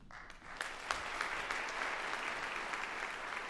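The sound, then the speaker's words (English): A concert audience at a performance of Handel's Israel in Egypt applauds steadily, a dense wash of many hands clapping at an even, sustained level throughout, with a few sharper individual claps standing out early on. “You're part of this this experience where the exciting conclusion of a movement moves you, go ahead and applaud.”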